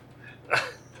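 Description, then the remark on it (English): One short, breathy burp erupts briefly against a quiet background, with no one talking around it. “Oh, yeah, I had that burp built up, man.”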